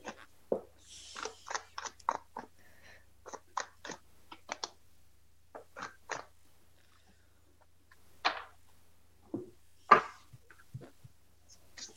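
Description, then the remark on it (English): A clogged vape being puffed, giving off a string of short, wet, crackling slurps in irregular bursts with brief pauses between them and no talking. “I have to call it my vape. It sounds like you're slurping a Slurpee.”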